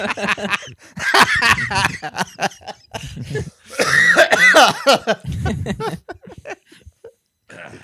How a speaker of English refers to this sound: Are you coughing up blood?